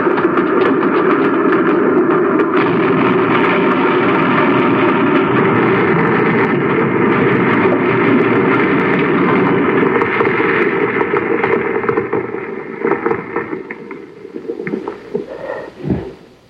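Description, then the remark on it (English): A runaway train with no driver roars through a narrow tunnel where nobody works in a steady, loud, rumbling rush for about twelve seconds, then the noise breaks up into uneven clattering bangs as it crashes at the end of the tunnel and dies away. “Sure, it sounds like a railroad train.”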